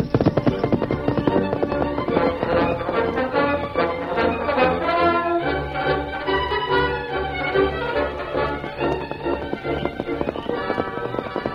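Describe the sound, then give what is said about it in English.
Galloping horse hoofbeats pound in a rapid, steady rhythm in a Lone Ranger story, as the Lone Ranger urges his stallion Silver into pursuit, loud and continuous, layered with a dense, busy wash of sound that becomes more strongly pulsed partway through. “As the sound of the drumming hoofs grew faint, he urged his mighty stallion into pursuit.”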